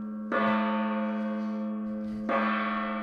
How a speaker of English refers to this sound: Three winners, 3 gongs, man.